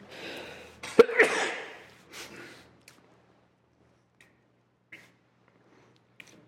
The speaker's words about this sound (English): I'm going to sneeze here.